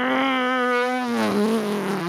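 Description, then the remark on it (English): Someone imitates a race car engine going through Canada Corner with their voice, holding a loud, buzzy, steady drone for about two seconds. The pitch dips slightly near the end. “Make the car sounds and be honest.”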